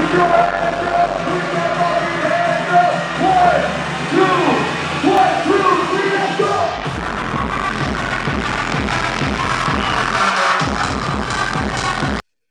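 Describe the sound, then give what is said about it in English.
A large crowd at a Bitcoin conference roars and cheers continuously while an amplified voice shouts over them, hyping the crowd; a low booming drone fills the first half, then a pulsing beat drives the noisy cheering until it cuts off. “hyping the crowd”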